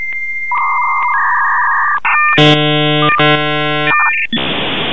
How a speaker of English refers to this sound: You know, like I imagine it was that sound of a modem connecting back, you know, when you had to like dial into like America Online or CompuServe or something, and you'd hear that.